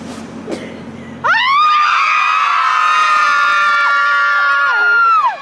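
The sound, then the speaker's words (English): After a brief low rumble, a group of mothers gathered in a parking lot bursts into a loud, sustained collective scream, many voices holding high pitched cries together for about four seconds before cutting off. From a CNN report. “Here's a CNN report about moms who come together in a parking lot every once in a while to scream.”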